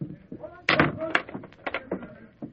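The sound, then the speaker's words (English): A door bangs shut, followed by a few sharp clunks and rattles as the door is locked, all fairly loud with no talking. “I'll lock the door.”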